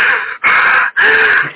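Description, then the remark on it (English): Three loud, rapid, rasping breaths, pushed hard in an exaggerated imitation of hyperventilating. Each breath runs into the next with only brief pauses. No talking. “I am, like, breathing really hard.”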